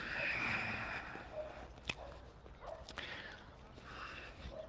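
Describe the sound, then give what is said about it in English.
A dog barks and whimpers, the sounds faint and intermittent over a steady outdoor background, with a couple of sharp short yelps standing out. “Well, no, if the other dog's going to chase him.”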